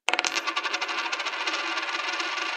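A flipped penny clatters onto a hard surface, a burst of quick metallic bounces that blur into a bright, ringing spin before slowly settling, with no voices.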